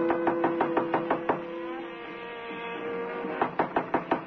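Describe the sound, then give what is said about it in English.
A series of sharp, evenly spaced knocks on a hotel room door on the 12th floor, a pause with faint jazz from a radio behind the door, then another quick burst of knocking, moderately loud. “No one answers the door.”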